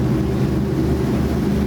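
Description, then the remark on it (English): A wakeboard tow boat doing a short loop, its engine droning steadily, a low, throbbing hum with rough wind-like noise over it, holding an even loudness throughout with no voices. “Oh, here goes Wakeboard Man again. Should we let him do his loop?”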